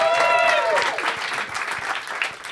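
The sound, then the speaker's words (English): An audience applauds the performers of a Law & Order THC sketch, breaking into steady clapping that carries on at an even, fairly loud level, opening with a high, sustained whoop that slides downward before dissolving into the applause. “This is Law & Order THC. Give them a round of applause.”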